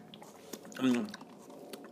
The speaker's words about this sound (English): I need to sip some water.